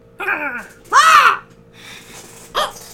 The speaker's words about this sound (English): What was that? It was a crow getting choked.